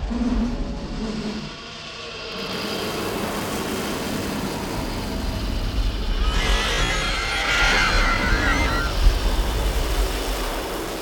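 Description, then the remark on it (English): A deep, steady rumbling roar swells, then erupts into a harsh tearing burst with crackling texture and warbling high tones, like the world ripping apart, with no voices. “And then the sound of the world tearing happens again.”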